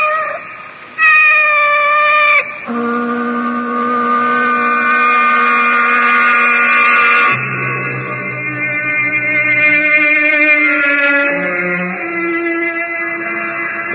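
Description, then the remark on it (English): An awake female cat with yellow eyes meows in long, drawn-out yowls that shift pitch and run almost without pause, loud, with no one speaking. “Her yellow eyes are fixed on me with that calculating look. Did she listen to my whole conversation? Did she approve or disapprove? What do I care? She's only a cat.”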